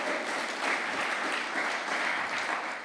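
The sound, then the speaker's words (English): A church audience applauds to welcome the new finance trustee, a dense patter of many hands clapping at a fairly even, moderate loudness with no voices rising above it. “Give him a little round of applause.”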